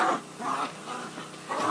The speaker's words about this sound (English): Look at you girls! Go girls! I'm playing rough, man. Go dogs, go.